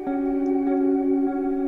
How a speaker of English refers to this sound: Let's listen to something a bit different here. Let's try Arctic. I think it's reverb. Maybe I could be wrong. Oh, it's a delay. Nice.